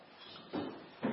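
Two dull, hollow knocks on wood, about half a second apart, moderately loud against a quiet background with no one speaking.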